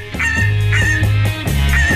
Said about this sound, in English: The pink-footed goose, Anser brachyrhynchus, today's Talkin' Birds featured feathered friend.